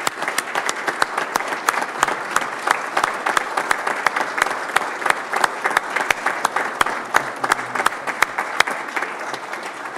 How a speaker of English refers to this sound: That's absolutely incredible. I'd actually ask for a standing round of applause, if you don't mind, for the incredible men and women.